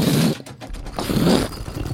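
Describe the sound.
A voice mimics gears turning, a shifting inside before a door pops open: a raspy, grinding mechanical buzz in two sustained bursts with a short dip between them, fairly loud and wordless.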